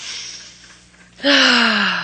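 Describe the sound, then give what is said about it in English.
A sailor on the Isle of Pines draws a long, breathy sniff in through the nose, followed by a sudden loud, hissing exhale with a low voiced hum that slowly falls in pitch. “Cut it out, will you? Stop sniffing.”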